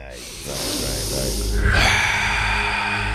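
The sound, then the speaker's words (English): A deep, audible breath drawn in, then a long exhale right after, both airy and breathy, with nothing else going on. “Let's breathe.”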